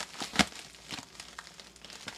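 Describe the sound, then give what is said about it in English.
Package wrapping being torn open by hand without scissors: crinkly rustling with one sharp rip near the start, then softer scattered crackles and tugs, no voices. “Scissors would be better, but I don't have scissors.”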